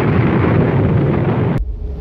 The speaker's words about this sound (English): A bomb was finally released exactly at the designated hour, and the explosion occurred as planned. Shockwaves leveled buildings up to a 5-mile radius.